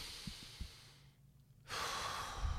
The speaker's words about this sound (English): If we slow it down, take a deep breath, it's almost like our breath rate controls how fast the thoughts hit us.